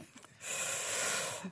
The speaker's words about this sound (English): Our guest has a little cough right now.